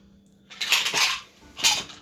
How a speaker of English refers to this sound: That's what 8 sounds. Yeah, it's an 8-sided dice. Yeah. This is a d8. 8-sided die, yeah.